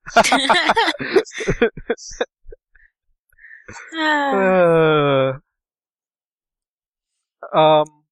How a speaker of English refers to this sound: We did that on purpose because, well, first of all, we had some noise in the original recording. We were trying to conceal it with some screaming in the background.